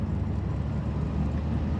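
A steady, low drone of Aqa Naser's Patrol SUV passing along a highway, with constant engine and road rumble at an even level throughout and no voices.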